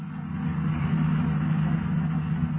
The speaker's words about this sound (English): Meanwhile, the boys in the police cars approach the hill that was indicated on the map.